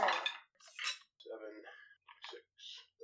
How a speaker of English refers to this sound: Okay, this is a lot of d6. I could use the roller, but rolling dice is half the fun of this game.